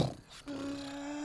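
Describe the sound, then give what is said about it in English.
A voice imitates a motorcycle engine: a short rough burst, then a steady, low humming drone held at an even pitch for about a second. “And that's when I hear a motorcycle.”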